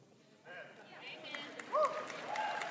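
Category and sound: crowd, audience clapping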